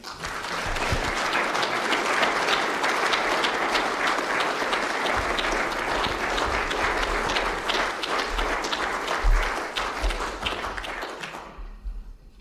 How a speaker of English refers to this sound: I'm sure that you'll recognise by the warmth of that applause that everybody here, and certainly myself included, thought that was a splendid lecture.